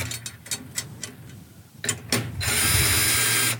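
A power drill turns snare drum tension rods to bring them down to meet the counter hoop, as prep work without tensioning the head: a series of sharp mechanical clicks and ratcheting taps, then a steady, loud motor whir that holds to the end. No one speaks.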